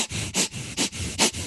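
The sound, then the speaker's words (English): Quick, shallow breaths drawn in and out through the nose, a steady run of about four hissing bursts, each under half a second, loud and airy with no talking, imitating breathing small amounts while dragging oneself to the side of a pool. “Like breathing really small amounts in and out of my nose and dragging myself to the side of the pool.”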